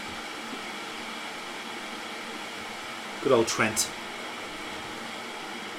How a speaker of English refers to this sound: I will say the kettle boiling is actually giving the Audacity a nice baseline to work off.